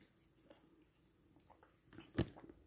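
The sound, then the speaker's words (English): Someone takes a giant swallow of water, with soft mouth clicks leading up to one loud gulp, followed by a few faint smacks in quiet. “Okay, so I just took a giant gulp of water in the middle of this, which again is not ideal, but that's life.”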